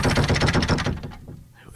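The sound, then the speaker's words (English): An apartment door being opened from a hallway, with a quick burst of rattling, clicking clatter for about a second before it settles into quieter shuffling and a soft final knock. “Here, why don't you just sit your fine ass down right here in the hall while I get the door.”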